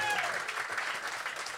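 A burst of steady, dense clapping from a live crowd fills the moment, bright and sustained with a faint tonal whistle at the very start.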